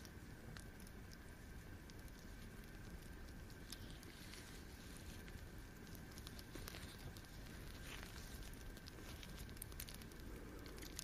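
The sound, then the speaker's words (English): A steady crackle of a fireplace fire with scattered sharp pops and snaps over a continuous low rumble, with no voices. “Hope you're enjoying the sounds of the fireplace too.”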